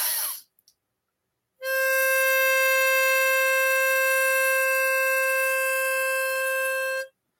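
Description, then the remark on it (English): A brief rush of breath, a short pause, then a whistle tuned to 528 hertz is blown with one long exhale as a breathing exercise. It gives a steady, unwavering tone with bright, reedy overtones, held loudly for about five seconds before cutting off. “And then when you breathe out into the whistle.”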